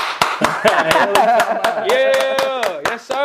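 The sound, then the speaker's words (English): A steady run of sharp hand claps, about four per second, keeps a brisk beat under a sustained melodic voice or tune that stays loud throughout. “Somebody add my claps in, y'all.”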